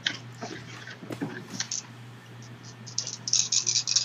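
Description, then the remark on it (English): Dice rattle and clatter across a hard surface in a few quick bursts of small clicks, fairly quiet, over a steady low electrical hum, as dice are rolled for doubled critical-hit damage in a tabletop role-playing game. “Roll twice as many dice or double it, however you prefer.”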